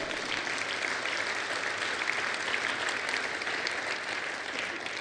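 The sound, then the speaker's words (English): A crowd claps steadily and cheers for several seconds, a dense, even wash of applause holding at a constant loudness with no voices speaking over it. “You can cheer and clap for that if you want.”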